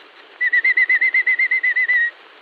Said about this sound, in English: The robin chirps through the day this way.